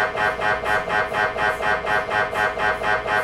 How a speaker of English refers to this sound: So unless you've had an MRI, you probably don't know, but they're extremely loud. They sound a bit like a jackhammer, someone jackhammering up concrete, really. For everyone listening out there, it sounds a little something like this.